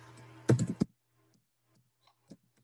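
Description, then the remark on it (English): A quick flurry of keyboard keystrokes as someone types in a Gmail address, then a few scattered, fainter key taps spaced out over the next couple of seconds, with no talking. “Let me type this in.”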